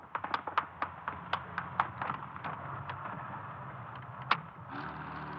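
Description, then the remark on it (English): A run of sharp, irregular clicks and knocks over a steady rumble, then near the end a getaway car's engine turns over and settles into a low, even hum. No one speaks. “Open her up. We've got to outrun them. Faster.”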